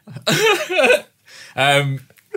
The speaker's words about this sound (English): Sounded like I was going to cry then, but actually I just had a cough.